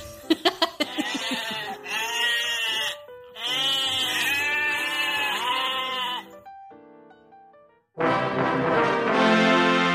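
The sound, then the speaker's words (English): Several goats bleat loudly, long wavering cries repeated in a series with brief pauses between them, some calls overlapping, with no talking. “All right, goats, this one's for you.”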